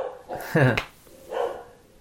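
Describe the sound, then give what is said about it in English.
Two dog barks a second apart: the first loud and sharply pitched, the second softer and more muffled, from the dog next door answering. “Her and the dog next door having a conversation.”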